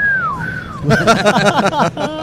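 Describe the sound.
Two quick descending whistles, a person imitating a gopher's call, before voices break in talking and chuckling over them, at the High Threat Concealment booth on day three of the NRA Annual Meeting.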